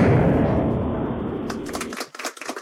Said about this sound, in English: I felt better about that second one. That was much better. Because it was the explosion. No, you mistimed the explosion before? I totally did.